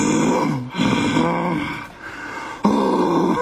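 A dog, Murphy, growls playfully while someone plays with it, in three long, rough rumbling bouts separated by short breaks, loud and steady, with no talking over it.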